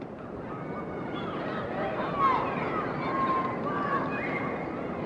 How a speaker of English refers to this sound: So maybe I just record the sounds of outside for a moment. This is New York, where hopefully you will be soon.